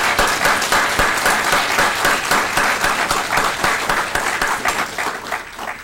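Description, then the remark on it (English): An audience at a feast applauds steadily for the helpers and the pianist, a dense wash of many hands clapping at an even loudness for several seconds without any talking. “At this time, let's give all these guys a round of applause just for all their help.”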